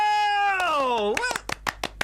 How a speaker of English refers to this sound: Oh! Hey, patronising clapping, thanks.